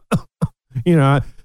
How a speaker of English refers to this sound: I start coughing and acting like a victim of the flu that's going around.